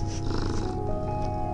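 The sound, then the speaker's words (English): A male cat purrs while kneading on a blanket, a steady low rumbling vibration that continues evenly throughout, with no voices over it. “He's kneading on a blanket, and he's purring. Do you hear him?”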